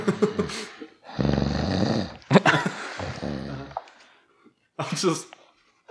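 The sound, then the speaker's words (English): A person imitates loud snoring with their voice: several rasping, buzzy snores in uneven bursts, fairly loud, separated by short pauses. “You hear snoring coming from the one at the front of the house.”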